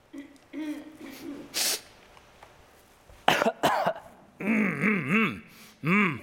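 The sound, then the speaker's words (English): A few sharp coughs and sniffs break a quiet stretch during an awkward lull in conversation, followed by wavering voiced murmurs, like someone idly humming or clearing their throat in a hushed room. “You start coughing and sniffing and you can kind of hear everything in the room and it's like, and there's always one.”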